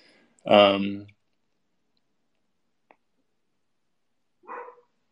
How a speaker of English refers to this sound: But sorry if my dog starts barking. He barks at everything out the window.